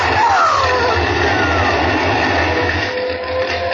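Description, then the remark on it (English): A fire engine's heavy engine rumbles steadily and loudly, with faint wailing tones gliding above it, as the fire engine approaches. “And here comes the fire engine.”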